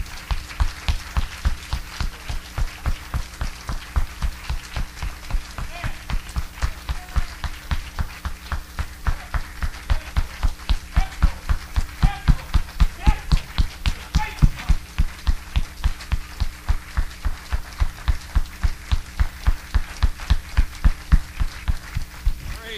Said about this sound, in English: Every time we clap for the Lord, we ought to give it that kind of energy. That was awesome. God sees that, and He is pleased with that.